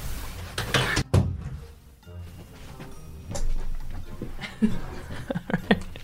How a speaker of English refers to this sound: 2 seconds, I've set the dogs off next door.